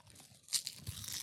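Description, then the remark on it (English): Crisp crunching and crackling as someone chews a brittle, seasoned, roasted seaweed leaf snack, with a sharper bite near the middle and softer crinkly chews following, fairly quiet and without talking. “I mean, it's kind of hard to chew, though.”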